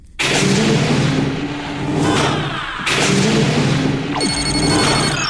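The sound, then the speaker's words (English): A starship communication hail chime: a bright, layered electronic tone rings out near the end, following several seconds of loud, rumbling engine-like drone with sweeping whooshes. “Captain, we are being hailed.”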